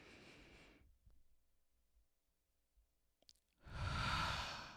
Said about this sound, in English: And so if you need to right now, you know, there are several breathing techniques you can do, but you can take a deep breath in through your nostrils.